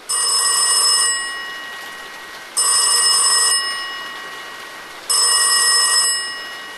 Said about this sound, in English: He looked mildly amused when the black mid-20th century phone rang to life on his desk.